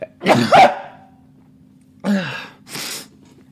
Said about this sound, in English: Excuse me. Fuck. Oh my God. On my end, that sounded demonic. I don't know if it sounded like that for anyone else, but it was certainly something. I sneezed my soul out.